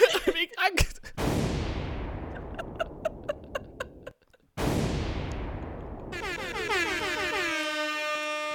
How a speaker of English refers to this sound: What? What? No, hold on, let me get some air horns.